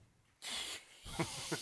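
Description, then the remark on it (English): Two loud, breathy hisses like a snake's, the first short and the second longer with a slight rasp near its end, with no talking. “That was a snake over there.”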